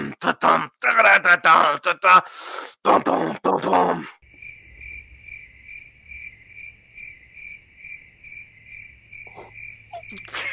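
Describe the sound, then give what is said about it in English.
After a few seconds of people talking, a steady, high-pitched cricket chirping sound effect takes over, pulsing in a fast, even rhythm, clear, continuing alone for several seconds. “All right, insert crickets.”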